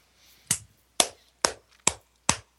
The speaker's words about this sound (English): Sorry, I had to do that. Who's applauding? That was me.